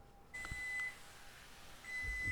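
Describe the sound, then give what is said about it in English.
A kitchen timer, set for 6 minutes while pecans bake in the oven, beeps in two short bursts of high, steady electronic tone, with a brief pause between them and faint low bumps of movement in the room. “I'm going to set the timer for 6 minutes and come back to it, give it a stir.”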